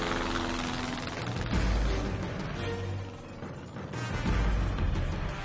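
A microlight aircraft engine roars, a buzzy, steady drone that surges and dips a couple of times as it powers into takeoff carrying two people, with no voices over it.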